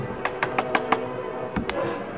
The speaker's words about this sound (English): One evening, as he was watching the coffee boil and the bacon sizzle in the pan, and thinking of how snug his cabin was with the storm raging outside, there came a knock at the door.